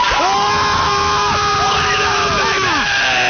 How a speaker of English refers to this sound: I need you to go ahead and yell. It's War Cry Wednesday on Wes and Walker. At the count of three, let's do the damn thing. One, two, three.